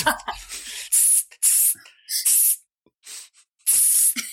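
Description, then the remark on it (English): A person makes several sharp, forceful hissing bursts in imitation of an angry cat, each lasting a fraction of a second, with brief breathy sounds between them. “You hissing? That's what cats hate it.”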